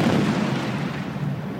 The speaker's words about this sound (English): Oh, wait, should we... Should I put it in? Like the bomb explosion?